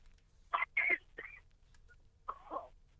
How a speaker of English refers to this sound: Sorry about that. I was coughing.